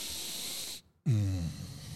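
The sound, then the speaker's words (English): A voice imitates a friend's heavy breathing: a long hissing inhale, a short pause, then a breathy exhale carrying a deep, falling moan that fades out. “He does a bassy moan on the way out.”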